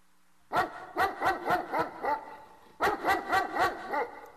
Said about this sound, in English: The dog's barking is louder. Where's it coming from? I can't stand it.